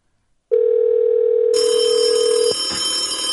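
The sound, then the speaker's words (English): After a brief silence, a loud, steady electronic telephone tone sounds as a Google Voice call connects, joined midway by a brighter, buzzy high-pitched layer that carries on to the end with no talking. “Please state your name after the tone, and Google Voice will try to connect you.”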